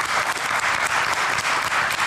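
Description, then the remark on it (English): Steady, dense applause from an audience thanking the candidates at an event put together by the Basalt Chamber of Commerce, a continuous wash of many hands clapping at a fairly loud, even level throughout with no voices standing out. “So I think we should thank all the candidates with a resounding applause.”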